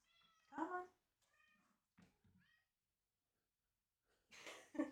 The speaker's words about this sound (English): Cat featuring on the podcast here. Hi, Maya. Hey, this is Maya, everybody. Yeah. This is our cat. She's looking for her food.